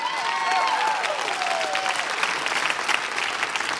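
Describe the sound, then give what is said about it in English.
An audience claps steadily in a dense, sustained burst of applause, with a few faint whoops or cheers rising above the clapping. “You have no idea how glad I am that you clapped at that part.”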